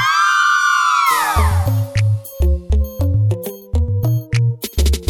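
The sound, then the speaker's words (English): A crowd of girls lets out a loud, shrill scream for about a second, the high voices swooping together before a thumping dance beat with deep bass cuts in. “All of the girls them, I wanna hear you scream.”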